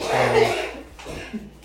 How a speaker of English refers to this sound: Hey, don't cough into my postcards, please. You alright?